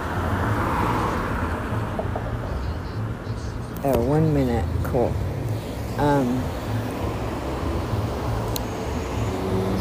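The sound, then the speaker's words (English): A steady low rumble of street traffic at a bus stop fills the background throughout, with a person's voice speaking briefly over it near the middle. “Yeah, so I think I'm just gonna wait for the bus.”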